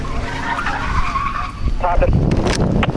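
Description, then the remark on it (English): A car driven away recklessly accelerates hard and pulls away with tires screeching and skidding, its engine roaring loudly, with indistinct voices in the background. “drove away in a reckless manner.”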